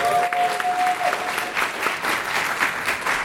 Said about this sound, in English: All right, thank you very much, Matt. Round of applause for Matt.